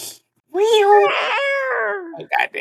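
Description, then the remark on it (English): A person lets out one long, drawn-out imitation of a cat's meow, fairly loud, its pitch rising then sliding down, followed by a couple of short voiced bursts. “I ain't even gonna ask what type of cat that was.”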